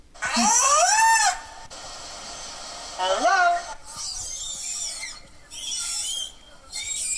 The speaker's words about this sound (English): This is meant to be the whale saying hello. I'm going to play that again.